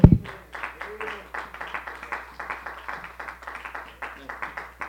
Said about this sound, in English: Let's clap our hands.